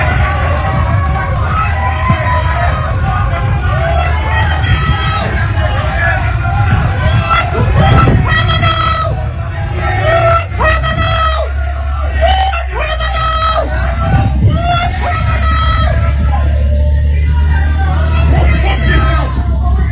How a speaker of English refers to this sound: She got booed. And I posted this on Instagram. Watch this, if it will ever load.